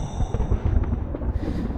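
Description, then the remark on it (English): Thunder rumbles low and steadily for about two seconds as a storm comes on, a deep crackling roll with several heavier booms rising out of it and no voices present. “Seems a storm's coming on.”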